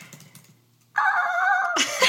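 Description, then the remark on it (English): A voice imitates a seagull with one loud, drawn-out squawk. It starts abruptly after a quiet moment, holds steady, then ends in a harsher, breathier burst. “Oh, I'm trying to do gull. Seagull.”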